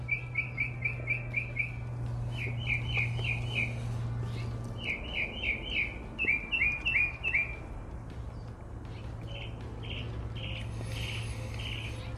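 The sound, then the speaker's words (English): Birds chirp in quick repeated bursts of high, bright notes outdoors, with a steady low hum and faint ambient noise underneath; no one speaks. “I mean, even the birds agree.”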